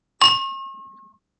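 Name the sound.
whiskey glasses clinking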